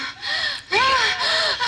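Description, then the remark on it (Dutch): A voice imitates heavy panting: about three loud, breathy gasps in quick succession, with voiced, moaning pitch glides running through the exhalations. “En dan zie je ook dat zij gewoon zitten te filmen hijgen. En zij willen winnen in het hijgen.”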